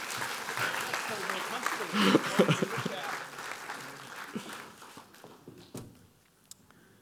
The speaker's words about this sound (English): Give these guys a clap.